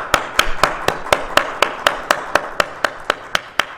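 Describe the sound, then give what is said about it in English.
An audience claps hands together in steady unison, roughly fifteen sharp, evenly spaced claps at a brisk pace, loud and crisp with no talking over them. “let's clap our hands and thank God for him this evening.”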